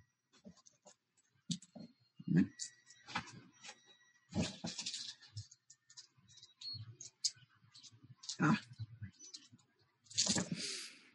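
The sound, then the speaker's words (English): Dice clatter and rattle as they are scooped up by hand with a dice scoop, an irregular run of small plastic clicks and scrapes in bursts over several seconds. “Just scooping up the dice.”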